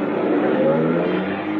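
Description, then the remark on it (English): An old-model car, parked at the street, pulls away with its engine rumbling steadily, a low droning motor with a slightly rough, uneven texture and no voices. “Then when I walked toward him, he scurried out of the drive and slipped into a car parked at the street.”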